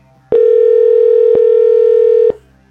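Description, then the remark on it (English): A loud, steady telephone dial tone hums for about two seconds as the 1071 The Boss radio station places a cash call to a listener, broken by a few sharp clicks at its start, middle and end, then cuts off abruptly. No one speaks. “See if we can get Mike on the phone here.”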